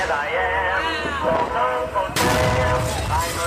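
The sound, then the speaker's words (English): Fireworks set off for the 4th of July go off with a sudden loud, crackling burst partway through, followed by sustained popping and hissing, while people talk and exclaim over it. “He happens to have fireworks.”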